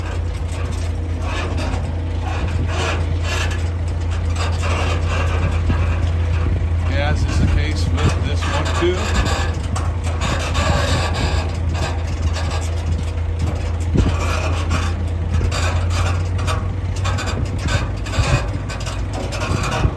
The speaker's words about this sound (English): We've got planes, trains, and automobiles all here in Galesburg, Illinois. And here's a plane with a wooden propeller.